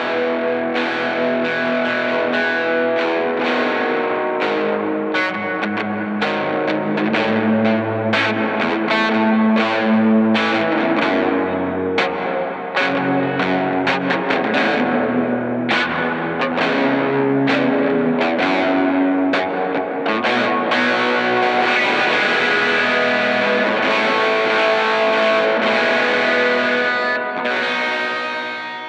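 An electric guitar with overdrive distortion, more dirt being dialed in, and reverb plays a continuous, gritty riff for about half a minute. It is loud, with steady strummed attacks and a light wash of effects. No one speaks.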